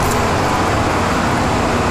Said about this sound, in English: The car just ran over Austin! The car just ran over Austin! Stone Cold just got run down!